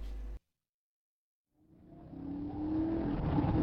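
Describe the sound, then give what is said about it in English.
After a brief burst and a moment of silence, a car engine rumbles in and swells steadily, its droning hum climbing in pitch and loudness as the vehicle accelerates; no voices. “Well, I've read the owner's manual for this car, Jack, and I'm pretty sure this rack I'm holding onto was meant to be for the luggage.”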